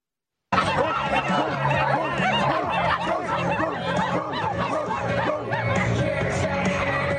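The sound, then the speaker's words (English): A dense crowd of voices in Seattle barks like dogs at a Christian man, overlapping yelps and woofs piling up continuously, mixed with snickering and jeering laughter, loud and sustained throughout. “Seattle Clown Show. Christian being barked at.”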